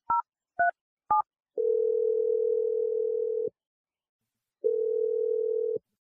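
Three quick keypad beeps from a telephone being dialed to place a call, followed by two long, steady ringing tones separated by a silent pause, clear with no voices.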